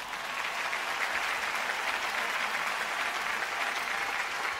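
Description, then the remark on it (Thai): An audience claps steadily for the young people, a dense wash of many hands applauding at an even level for several seconds with no voices standing out. “ปรบมือให้น้องๆหน่อย”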